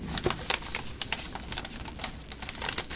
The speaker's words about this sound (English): He picks up paper from the desk and writes a note. What's he writing?